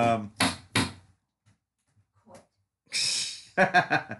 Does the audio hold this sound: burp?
no